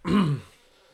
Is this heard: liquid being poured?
no